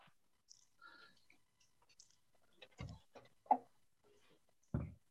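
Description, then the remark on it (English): Dice are dropped by mistake and clatter across a hard surface: a handful of sharp, irregular clicks and knocks, fairly quiet, ending with one louder thud as a die lands on 20. No one speaks. “Just dropped my dice by mistake.”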